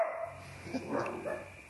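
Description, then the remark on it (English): A dog gives a few short, soft barks and yips in quick succession, fairly quiet, over a steady low background hum. “Oh, dogs, are you coming too?”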